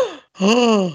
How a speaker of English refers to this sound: Surprise gasp.